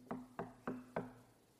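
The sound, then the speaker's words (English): Four quick, evenly spaced, distinct knocks on a hard surface, each with a short ringing decay, then quiet. No one speaks. “And Jesus stands today and he knocks.”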